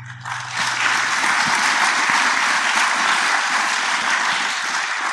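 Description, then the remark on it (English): An audience claps as a vote on whether software development has gotten too complex, dense overlapping clapping that rises quickly and holds steady and loud for several seconds, with a faint low hum underneath at the start. “Let's do by clapping. How many people think software development has gotten too complex?”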